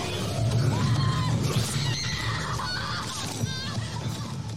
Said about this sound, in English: But most of all, screams.